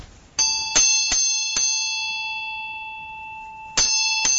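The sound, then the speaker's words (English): A small bell is struck four times in quick succession, its bright tone ringing on and fading, then struck once more after a pause. Clear, with no talking. “Does the bell speak to you?”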